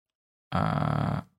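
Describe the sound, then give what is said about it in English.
A single loud, voiced yawn lasting under a second: a low, steady, slightly gravelly drone that starts abruptly after silence and trails off quickly, with no talking. “Sorry, I was yawning.”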